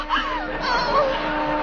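The whistle of the old tack factory blows at midnight in one long, steady, moderately loud tone with a slight wavering at the start, sustained for the whole moment with no talking over it.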